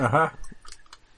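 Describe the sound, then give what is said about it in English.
After a brief burst of a voice, a few light, hard clicks follow at irregular intervals as dice roll and clatter across and off a tabletop, fading out quickly. “And then the dice actually was using has just done a runner.”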